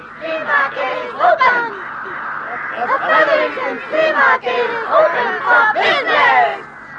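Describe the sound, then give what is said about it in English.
A dense flock of crows caws and squawks loudly and continuously as it dives and weaves among trees, many harsh overlapping calls crowding together for several seconds with no pauses. “High above them, a flock of crows started to dive. They weaved in and out among the trees, squawking as loudly as they could.”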